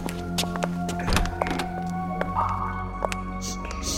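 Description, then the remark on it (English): A door opens with a single solid thunk, fairly loud, followed by a few small clicks and taps over a steady background hum. “Where does he come and go from? Over here, door number one.”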